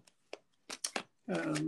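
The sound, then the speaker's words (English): A deck of tarot cards being shuffled: a few quick, crisp papery bursts in an uneven rhythm, followed by a short stretch of someone's voice at the end. “shuffle a little bit more. I already did a bit.”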